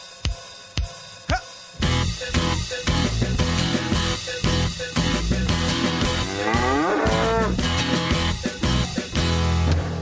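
A single drawn-out cow moo swells up partway through, loud, riding over a busy musical backing with steady percussive hits and no talking.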